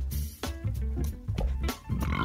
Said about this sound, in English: Excuse me, keep that burp in there,